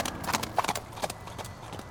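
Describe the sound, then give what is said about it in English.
Horse hooves clip-clop at a steady walking pace as the horse is led away, a string of sharp hollow knocks that stay even in loudness, with no voices present. “Big Black Hawk slaps the horse on the rump, and a brave leads the horse away from the circle.”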